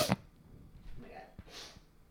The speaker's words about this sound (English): Delete my sniffs. Okay. Sorry. Do you want a tissue? No, I'm good.